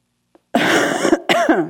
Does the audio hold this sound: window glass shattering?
no